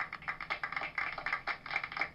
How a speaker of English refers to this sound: They're happy too, because they're clapping for you.